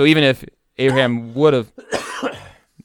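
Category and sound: human body sound, coughing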